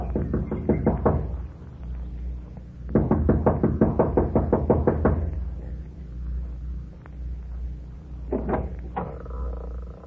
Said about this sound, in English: Kathy Evans, an attractive girl in her early 20s, gets out of the car, runs up the steps of the lodge to the front door. She knocks impatiently, looking about anxiously.